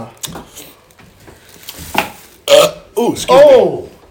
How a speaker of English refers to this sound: Oh, that! Oh, the burp is worse. Yeah. Oh, the burp is worse.